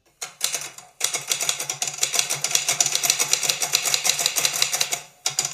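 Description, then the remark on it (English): Rapid, continuous typewriter clacking with dense mechanical keystrikes, loud, pausing briefly near the start and trailing off before a final burst at the end. “I got the sound effects back. Good, the typewriter's back.”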